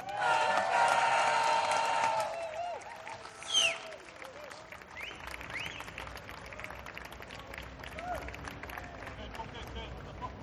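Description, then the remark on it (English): A live audience claps and cheers loudly for about two seconds as a performer is introduced onto the stage, with a sharp whistle rising above it, then the applause thins into scattered clapping, whoops and crowd chatter. “Next up, I want it even louder this time, because you know him, you love him, just like I do.”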